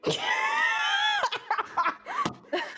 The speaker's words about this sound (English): You're just screaming into a necklace. Yelling into your, why are you screaming into her titties?